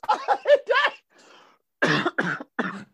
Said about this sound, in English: Not the COVID cough. Okay, the COVID cough.